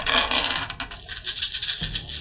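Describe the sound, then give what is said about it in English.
A handful of dice rolled in a tabletop role-playing game clatters and rattles continuously for a couple of seconds, a busy, bright jumble of small hard clicks with a soft thump near the end. “All right, here we go. Lots of dice.”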